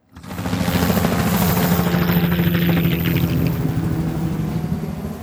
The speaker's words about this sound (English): News choppers circle overhead.